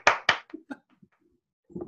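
Two sharp, loud hand claps in quick succession from a man clapping, followed by a few softer scattered knocks and a brief voice at the very end.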